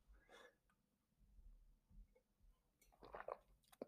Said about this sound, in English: Just getting a little bit of water there for a second.